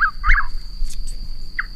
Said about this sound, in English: Little Chuck Wills Widow sample there.